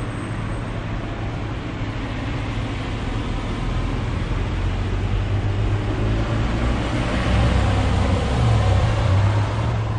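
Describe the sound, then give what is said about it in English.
Steady traffic rumble in the wide open space of a shopping mall car park, a broad low engine drone with a hiss of tyres, swelling slightly louder toward the end as vehicles pass. No one speaks. “I've come to the wide open space of a shopping mall car park”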